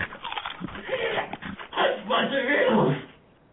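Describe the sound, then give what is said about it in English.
A dog whimpers and growls, a steady run of whiny, rumbling vocalizations lasting about three seconds before trailing off into quiet. “Babe, don't hurt my dog.”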